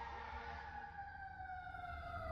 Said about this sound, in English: Hold for sirens.